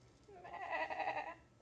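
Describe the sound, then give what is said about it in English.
A single drawn-out bleat from a mother sheep, wavering and nasal, rises out of a quiet outdoor background at night and fades after about a second. “Yeah, Mr. Sheep is a mama.”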